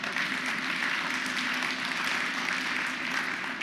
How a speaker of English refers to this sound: Did I really clap for you? You didn't do anything. Let me clap for me.